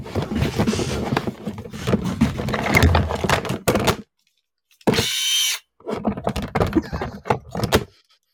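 A power drill whirs in one short, steady burst after a lull. Before and after it come busy rattling and clattering sounds, like tools and parts being handled.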